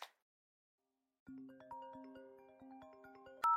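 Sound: mobile phone ringtone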